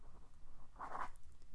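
A quick burst of pen scribbling on paper as someone writes fast, a short scratchy flurry lasting under a second, fairly quiet against a soft hush.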